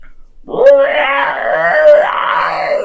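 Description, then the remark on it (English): A human voice imitates the scream a plant gives out as it dies after taking 9 damage: a sustained, wavering high-pitched wail that rises, holds and bends for about two and a half seconds, loud and strained like a tortured moan. “Your plant screams.”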